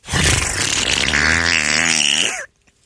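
A single long, loud, rasping fart sound with a low, wobbling pitch, sustained for about two and a half seconds before cutting off abruptly into silence.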